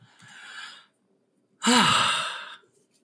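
Snoring from close by: a softer breathy exhale followed after a pause by a louder, rasping inhale with a low rumbling vibration. No one speaks.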